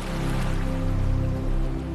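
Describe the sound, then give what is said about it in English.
A steady wash of ocean waves rolling over sand, a continuous soft hiss with a low rumble beneath that swells slightly and eases as the waves pull back into the ocean. No voices. “The sound of the water rolling through and around each grain of sand is a gentle hiss, like cold water on a hot surface, and the pullback from the waves is a sigh back into the ocean.”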